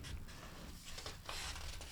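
Soft, papery rustling and shuffling as pages are flipped, with a few brisker swishes among quieter crinkling. It is fairly faint and continuous, and no one speaks.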